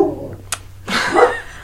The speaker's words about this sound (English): Sorry about that. Vinyl wanted to say something. It's my dog.